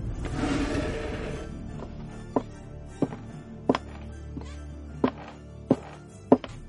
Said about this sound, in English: Hashem Yishmor, who can be knocking so late in the evening?